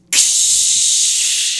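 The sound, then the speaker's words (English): A voice pretending to be a cloud imitates rain with a steady, loud, high-pitched hiss that starts abruptly and holds unbroken for about a second and a half, fading only slightly at the end. “I'm gonna just cloud rain down on you.”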